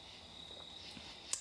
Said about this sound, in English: But we're camping. We still outside. You get the ASMR of the crickets and the little cicadas.